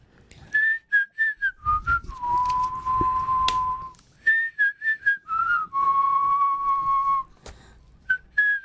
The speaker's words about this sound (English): I hope you're going to whistle the tune the rest of the day like we are.